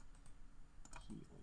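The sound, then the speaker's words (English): A handful of soft, quick clicks and keyboard taps, with a small cluster near the end, sounding like a mouse click on a dice icon to roll for healing in a game and some typing at a quiet level over a faint low hum. “Click on that little dice icon next to your healing.”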